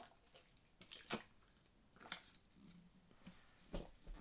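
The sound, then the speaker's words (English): A few quiet wet sips and mouth clicks of someone drinking water during a water break, spaced out over a few seconds, soft, with no talking. “Pardon me one more time, y'all. Water break.”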